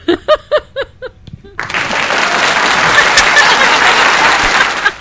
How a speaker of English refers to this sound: And we're going to do applause anytime somebody lets a spoiler out of the bag.